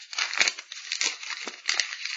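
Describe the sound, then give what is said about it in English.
Paper slips with various topics written on them rustle and crinkle inside a hat, a steady, dry, papery shuffling with a few sharper crackles, moderately loud and with no one talking. “Right, but anyway, the hat, it's got bits of paper on with various topics, so let's jump in.”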